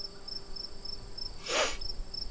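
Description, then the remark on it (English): A crickets sound effect: crickets chirp in a steady, evenly spaced rhythm against a constant high insect drone, with a brief soft whoosh-like burst near the middle. No voices are heard. “Yeah, crickets again. Crickets again.”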